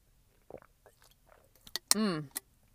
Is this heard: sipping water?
yes